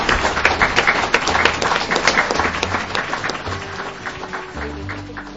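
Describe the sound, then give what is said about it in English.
An audience at a live event at the National Archives at Kew, Caribbean Family History Day, 25 November 2006, breaks into steady applause, a dense patter of many hands clapping loudly at first, then gradually thinning and softening over several seconds, with a faint low hum underneath. “A round of applause.”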